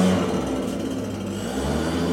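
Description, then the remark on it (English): Loud, steady engine roar from a bike gang's motorbikes riding past, a dense rumbling drone that holds for a couple of seconds with a slight swell at the end, no voices. “We got a bike gang going by.”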